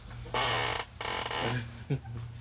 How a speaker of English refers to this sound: Squeaky chair. Yeah, sorry about the chair. I got it to squeak, like... Well, I got it to not squeak throughout the whole episode until I had to move.